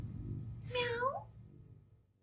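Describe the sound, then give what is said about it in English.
A single drawn-out meow, rising then falling over about half a second, voiced by a woman imitating a cat, standing out clearly over low background rumble before fading away. “Like at the end when she started meowing, it was evident that she's the cat.”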